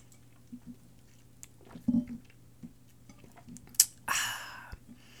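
A quiet sip of coffee: soft mouth clicks and swallowing noises, then a brief breathy slurp near the end, with no talking.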